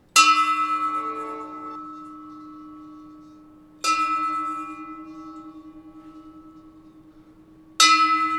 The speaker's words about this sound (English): As we sat there at the open window, a nearby church bell was tolling a funeral knell.